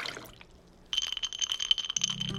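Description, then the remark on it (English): A brief clink of ice against glass, then a steady pour of liquid with a bright ringing tone from the glass, clear, with no one speaking. “glass, ice, pour.”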